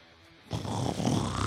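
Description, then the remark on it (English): After a brief hush, an elephant seal's call erupts: a loud, rasping, guttural bellow with a throbbing low rumble that continues steadily to the end, like an enormous snore. “I love the elephant seal sound.”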